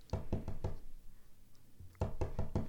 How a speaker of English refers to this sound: As you put the finishing touches to your last and you hope best strategy, you hear a soft tap at the door.